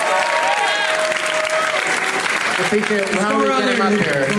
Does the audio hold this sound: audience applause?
yes